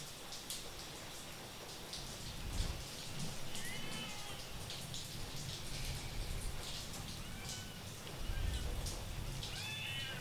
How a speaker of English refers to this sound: You hear the cat?